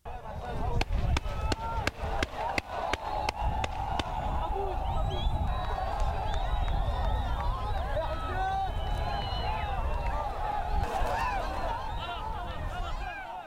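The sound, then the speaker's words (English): A dense protest crowd in Israel yells and shouts continuously while a rapid series of sharp gunshots cracks out in the first few seconds, then the roar of voices carries on unbroken. “So as you can hear there, some of the shooting and the protesting and the yelling, and that's just the typical situation that occurs there in Israel whenever there's protesting.”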